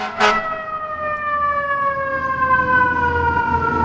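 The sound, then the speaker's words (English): A loud American fire truck siren, from ladder truck number three, wails, its steady harmonic tone slowly falling in pitch as it passes, with a rumbling engine underneath and a brief burst of noise at the start. “We'll wait till this fire truck...”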